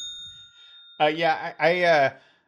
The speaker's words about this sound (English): So I'm going to hit the bell for that.